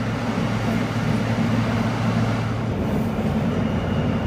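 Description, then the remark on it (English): A Brooklyn Coney Island, Stillwell Avenue bound F local subway train rumbles steadily along the track between High Street and J Street Metrotech stations, a loud, continuous low drone with a sustained hum that drops out near the end, heard from inside the car with no voices. “This is a Coney Island, Stillwell Avenue bound F local train.”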